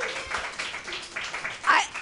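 A crowd claps in a steady, dense patter for a couple of seconds, with a brief higher-pitched cheer or shout rising over the applause near the end.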